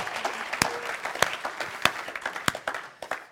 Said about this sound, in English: Come on, if we're going to clap, let's clap like we mean it.